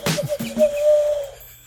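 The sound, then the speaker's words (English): A person imitates an owl's hoot: a couple of quick breathy hoots, then one longer, steady, wavering hoot held for about a second, with no other sounds around it. “Try and owl it up a bit more. That sounded like a train.”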